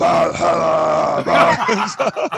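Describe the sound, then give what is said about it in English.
A man lets out a loud, gravelly growl in the style of Viking metal vocals, a sustained rough roar followed by a few shorter guttural bursts. “Maybe I should like songs. Growl like.”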